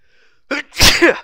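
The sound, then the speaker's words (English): A single loud human sneeze: a sharp intake of breath followed by an explosive burst that trails off quickly, with no other sounds around it. “I got a sneeze, man, and it's gonna happen any second now.”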